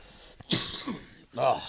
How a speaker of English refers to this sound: Is that nasty cough? There's that cough that's gonna come and get me.